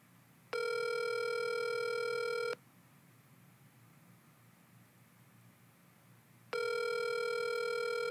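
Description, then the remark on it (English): A phone line rings while waiting for an answer: two long electronic ring tones, each about two seconds, separated by a pause over a faint hiss. No voices are heard. “Is he going to answer? That's a good question.”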